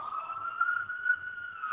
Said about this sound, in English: And then got the fire truck running by here. Yep, yep, yep. So, you know, they're doing good work here.